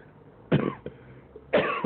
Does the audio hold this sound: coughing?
yes